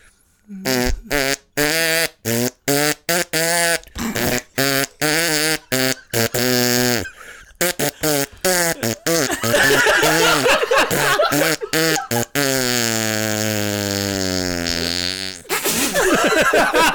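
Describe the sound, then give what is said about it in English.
A person makes a run of short, pitched fart noises without using hands, bursting out in a choppy rhythm that traces a familiar rock riff, then stretching into one long, wavering blast before a final quick toot. No talking. “Yo, the farts. I'm surprised there wasn't more of that. I could do that to any song that you can throw out there.”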